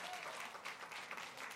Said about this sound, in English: Man, amen. Come on, get the Lord a great big hand clap of praise.